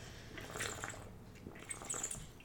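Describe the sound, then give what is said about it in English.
Quiet sounds of someone drinking water, with a couple of wet gulps and swallows about a second apart and soft liquid sloshing in between. “So drink water. I'm drinking.”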